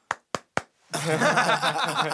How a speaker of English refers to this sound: Okay, so I'm not even going to give applause for that. Yeah, it was okay. I clap for me.